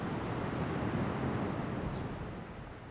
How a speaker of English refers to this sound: The sound of the river flowing over the clifftop and spilling endlessly into the lake in nightfalls had drowned out much of the noise that crowded my thoughts before I arrived at the foot of that waterfall.